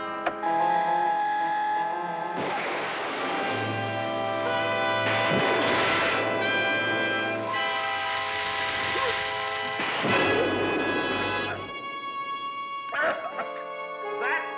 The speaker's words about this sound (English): What happened? I don't know. That model plane sailed through the window and dropped a bomb.